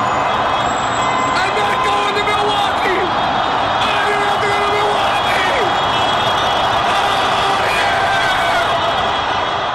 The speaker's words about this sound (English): And let's just hear some of the cheering and the honking that was going on outside my house. This is, actually, you can hear me here. Just listen.